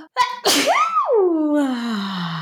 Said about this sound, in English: Wow. What a great sneeze. Wow.